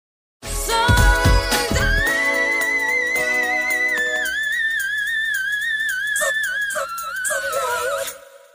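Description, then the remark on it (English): A female 1990s pop singer holds a piercing, whistle-register high note for several seconds at the end of one of her first big hit songs, its pitch wavering slightly, over the song's instrumental backing that opens with a burst of heavy bass. “Ah, yes, the fabled whistle register, the apex of her fabled 5-octave range.”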